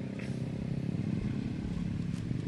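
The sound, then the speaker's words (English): A Honda Ruckus scooter engine hums steadily as it passes by, its low buzzing drone holding at an even loudness across the whole stretch with no voices over it. “Is that a Ruckus? It's a Honda Ruckus.”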